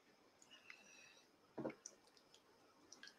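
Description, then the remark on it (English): A single short, wet slurp of water, followed by faint swallowing clicks and tiny mouth sounds, otherwise quiet. “Let me have a slurp in the water.”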